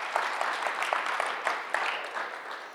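A crowd applauds steadily, a dense wash of many hands clapping at an even, moderate loudness with a few sharper claps poking through, and no one speaking.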